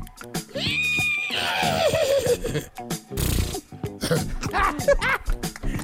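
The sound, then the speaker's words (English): A person does a vocal horse impression: a high, wavering whinny that slides downward, followed by lip-fluttering snorts and breathy sputters, fairly loud. “Man, you got the lips for this.”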